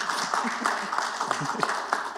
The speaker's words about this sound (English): Oh, you can clap for it. Go ahead.